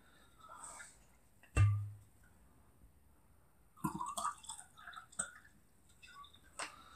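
A heavy thud, then a stretch of quiet before liquid sounds: splashing, dripping and light clinks as wine and mineral water are poured into a glass at a festival in Galați, with a final sharp tap near the end.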